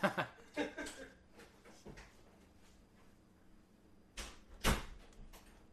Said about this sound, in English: Just give me respect to the fact that I'm drunk enough that I missed the door handle.